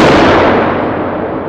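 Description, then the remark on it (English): A single loud gunshot cracks inside a church building, then its echo rolls away, the sharp high edge dulling as the sound fades into a long reverberant tail. No voices. “But just before they make their way inside, the sound of a gunshot echoes through the air.”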